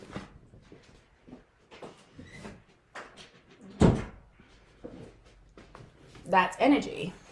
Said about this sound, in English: I need to shut my door because that's my husband.